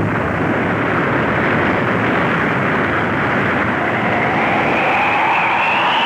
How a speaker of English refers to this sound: It's beginning to give. Suddenly, with a great roar, the huge dam collapses.